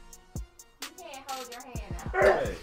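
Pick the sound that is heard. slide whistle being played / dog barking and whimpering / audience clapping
dog barking and whimpering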